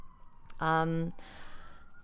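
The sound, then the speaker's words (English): An emergency siren wails steadily, its tone slowly sliding in pitch, while a voice briefly speaks loudly over it partway through. “The siren is killing my vibe, guys.”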